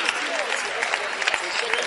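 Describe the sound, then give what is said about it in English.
An audience claps steadily for Jesus, a dense patter of many hands with a bright, crackling texture for a couple of seconds. “Clap for Jesus if you want to. Clap for God.”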